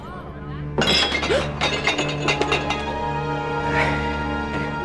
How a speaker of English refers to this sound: He's so taken aback that he dropped his glass.